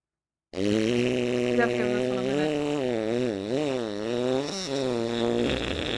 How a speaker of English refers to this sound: That sounds like a you just woke up fart and you've been stirring.